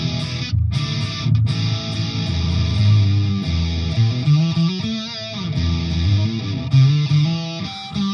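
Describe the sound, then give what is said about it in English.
An electric guitar played through a distortion pedal, thick and buzzy, with sustained chords, single-note runs and a few bends, played steadily and fairly loud with no one speaking. “I know through distortion you add that on, you can kind of use it as a clean boost. But obviously it doesn't have the mid bump like a tube screamer or something would have.”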